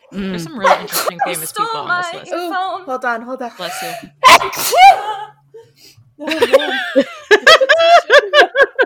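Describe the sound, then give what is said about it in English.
A sudden, loud, sharp sneeze bursts out partway through, surrounded by people talking with a bit of laughter before and after. “… sneezing and … screaming.”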